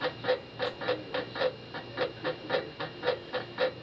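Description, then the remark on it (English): A bed creaks in a fast, steady rhythm, about fourteen squeaky strokes in four seconds, each with a faint tonal whine, moderately loud with no voices. “Listen to that bed. It's about to break.”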